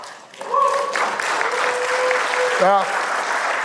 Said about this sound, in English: That's for my wife. You need to applaud my wife.